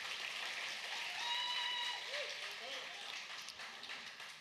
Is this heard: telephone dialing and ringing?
no